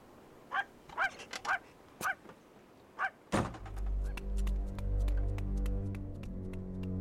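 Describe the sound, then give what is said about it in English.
A dog barks sharply several times in quick bursts, then a heavy thunk is followed by a loud, steady mechanical drone with a low rumbling hum. “And take this fucking dog with you.”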